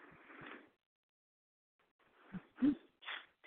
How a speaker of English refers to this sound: Crawling my way out of the white, cold marble coffin yet again and scratching those talons along the marble. Did you hear it? This is my talons.